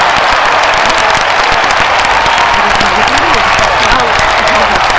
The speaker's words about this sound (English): Applause. I haven't heard that in a long time.